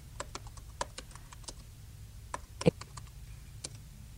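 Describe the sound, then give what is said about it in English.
Quick, irregular keystrokes clatter on a computer keyboard as someone types "Christmas Tree" into a song search, a burst of a dozen or so sharp clicks with one louder key press near the end, over a low steady hum. “Okay, so I'm just going to type in Christmas Tree.”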